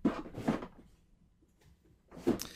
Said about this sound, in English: can you open the drawer? I want to see if we have any tissues